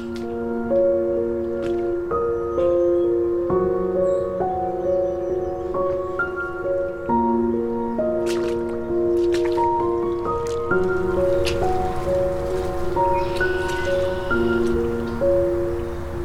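Rubber boots squelch through water a few inches deep during a mid-afternoon birding walk, with wet, sucking steps at an unhurried, irregular pace, along with dripping and gurgling sounds. No one speaks.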